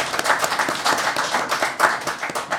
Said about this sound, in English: Yes, the Columbo Street Irregulars are on 6 points, while Dorothy L. Slayers are on 11 points. Oh, round of applause for Dorothy L. Slayers!